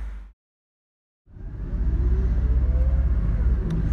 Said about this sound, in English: Right. I'm at the bus stop now, just outside Henry Brumell Soups and Queen Street Chippy. I've got 20 minutes until the bus. Probably could have timed that better. Oh no, wait, it's coming now.